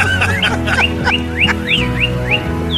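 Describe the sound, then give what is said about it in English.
An ambulance siren in Pacific Palisades chirps like a bird in quick, repeated rising-and-falling sweeps, about eight in a row, fairly loud over a steady low hum, with no talking. “Sounds like a bird, but it's actually a very pleasant Pacific Palisades ambulance.”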